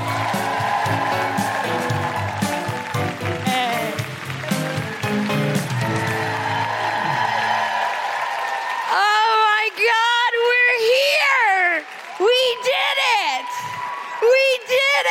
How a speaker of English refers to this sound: Put your hands together and make incredible patriarchy smashing noises for the wonderful